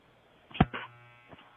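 A short, low electric buzz like a shaver hums steadily for under a second, framed by a couple of soft bumps or clicks; fairly quiet and no one speaks.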